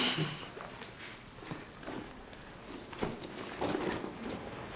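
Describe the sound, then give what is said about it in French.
Footsteps of someone approaching in a creepy film scene, a steady series of soft, muffled thuds that grow slightly louder toward the end, with a faint hiss in the background and no voices. “Il y a quelqu'un qui avance.”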